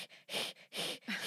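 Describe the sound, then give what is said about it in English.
A voice mimics a cat's hiss, as a pet cat does after sniffing underneath a door, three times in quick succession, each a sharp, airy burst of about a third of a second, fairly loud, with short pauses between. “he just walks around the house hissing at random moments because he smells her”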